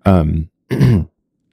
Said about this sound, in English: Excuse me. Sorry. You're not allowed to cough. You're in a library.